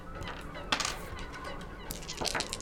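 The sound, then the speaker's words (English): Birds honk loudly and repeatedly, a rough overlapping chorus of goose-like calls that carries on steadily over a noisy background with no one speaking. “Suddenly it becomes the birds. They're trying to help us.”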